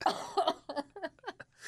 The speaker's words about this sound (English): You can't make me laugh. It makes me cough.